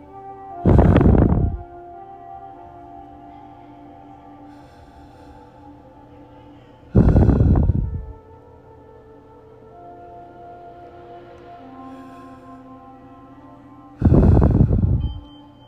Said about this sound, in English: So we're going to do breathing exercise three times. Still remain in that yoga pose.